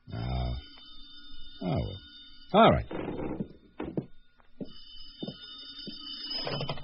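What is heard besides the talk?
telephone ringing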